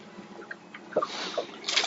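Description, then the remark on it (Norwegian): A short splash of water while fishing for pike, with a couple of soft sloshing bursts around the middle and end over a faint, steady watery background; no voices. “Flask, sa det.”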